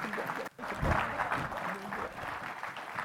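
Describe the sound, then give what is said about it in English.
A church audience claps steadily in praise of the youth after their statement of faith, a dense wash of applause with a few scattered voices and cheers mixed in, sustained for a few seconds at moderate volume. “Let's give them a hand clap of praise.”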